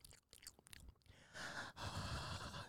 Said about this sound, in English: Stop talking. You're breathing too hard.